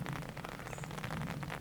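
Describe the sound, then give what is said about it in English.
Steady rain patters on an open umbrella overhead, a dense, continuous spray of small taps with no gaps, fairly quiet, with no voices. “Can you still hear the rain pattering down on my umbrella here?”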